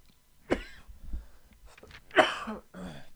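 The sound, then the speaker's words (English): A person coughs and clears their throat, irritated by using wax pens, with a sharp burst near the start, a louder rough cough later, and a final short throat-clearing rasp. “These wax pens, they do make my throat itch a little bit.”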